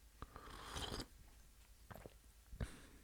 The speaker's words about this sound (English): I'm going to take a sip of some Black Rifle coffee real quick.